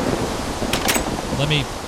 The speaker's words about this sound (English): Our main spawn area, as you can hear, it's raining.